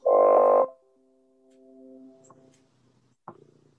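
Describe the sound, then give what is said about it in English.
A loud, buzzy electronic blurt from a computer, like a robotic cat fart, lasts about half a second, followed by thin lingering tones that waver and fade, then a sharp click and a low, rough tail. “It was like a robotic cat fart computer sound.”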